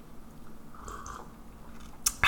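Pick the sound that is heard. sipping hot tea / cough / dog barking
sipping hot tea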